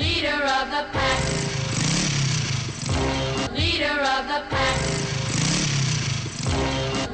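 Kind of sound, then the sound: vehicle, motorcycle engine revving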